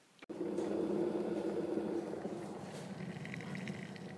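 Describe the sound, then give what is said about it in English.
A kettle rumbles and hisses steadily at a rolling boil, its low churning roar filling the space, with faint higher bubbling rising toward the end. “Ooh, a boiled kettle.”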